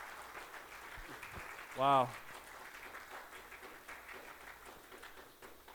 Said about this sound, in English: You can applaud now. Hey, thanks. Yeah.